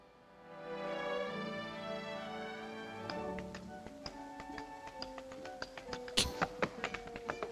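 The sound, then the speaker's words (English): Tap dancing shoes of someone sitting on a bench reading a newspaper strike the floor in a quick, crisp rhythm that builds from sparse taps into rapid clusters, playing over sustained orchestral music that fills the opening seconds alone. “Just sitting on a bench, just tap dancing and reading the paper.”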